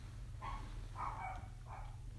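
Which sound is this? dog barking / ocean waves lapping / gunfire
dog barking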